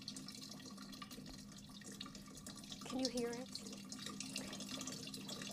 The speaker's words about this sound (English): a research fellow from the University of Leicester, has used classical references to Ctesibius's work to build a replica of one of his earliest water clocks.